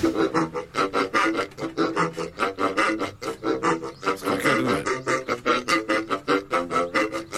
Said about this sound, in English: But basically, so he plays these drain pipes with the squeaky pigs. And this is what he sounds like.